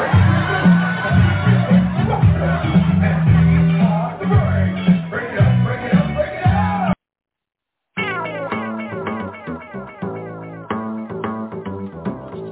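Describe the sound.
A loud crowd in Sacramento claps and cheers in a dense, roaring wash of noise. It cuts out for about a second, then comes back with tonal, sung-sounding voices rising over the applause.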